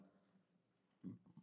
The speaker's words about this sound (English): Oh, fucking sorry. God damn. Burping. Kill me, please. The fucking burps are killing me.